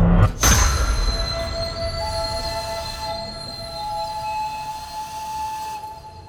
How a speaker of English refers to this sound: The driver slams on the brakes and blows the engine's whistle as the train screeches along the rails.